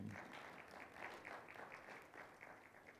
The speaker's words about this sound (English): That was not a very good appreciation clap. We can do better than that.